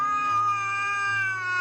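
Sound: cat meowing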